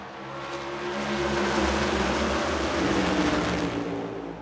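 A field of NASCAR Cup race cars roars past at the start of a 240-lap race in the St. Louis area before a sold-out crowd, a dense, sustained engine drone, loud and steady with a low rumble, swelling slightly in the middle before easing off. No one speaks.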